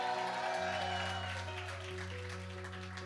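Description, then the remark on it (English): A crowd claps steadily and loudly after a preacher asks them to clap if they believe correction is not rejection, a dense continuous patter of many hands, layered over sustained low keyboard or organ chords that hold underneath. “Clap like you believe that correction is not rejection, it's for your perfection.”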